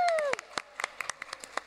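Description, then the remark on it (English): An audience practises cheering and clapping, in quick, irregular bursts of sharp hand slaps, with a brief sliding vocal 'woo' cheer at the start, all lasting under two seconds. “So can you all practice going, yay, clapping, woo?”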